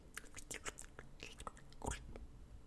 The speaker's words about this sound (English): Did you hear it? That sounds a lot better. It sounds like swallowing. Yeah, that exactly.